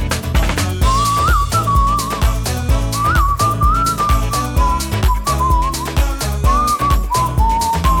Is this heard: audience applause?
no